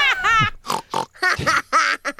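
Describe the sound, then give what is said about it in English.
A pig oinks and grunts in a quick series of loud, squealy bursts, with short gaps between each call; the pig has taken the place of the groom, Huck, at his wedding to Becky. “Hey, they done switched to groom with a pig!”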